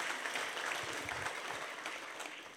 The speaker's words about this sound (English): But why don't we give them a quick round of applause? We're really glad that you're with us.